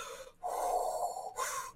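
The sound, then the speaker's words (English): Deliberate Lamaze-style calming breathing in a steady pattern: a short breath, a long drawn-out exhale, then another quick breath. It's airy and fairly loud, with no talking. “Lama's breathing.”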